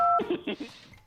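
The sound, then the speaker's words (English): A single short telephone keypad tone, a steady two-pitch beep lasting a fraction of a second, as a phone call is dialed, followed immediately by a burst of voice-like sound. “Well, I'll call her right now”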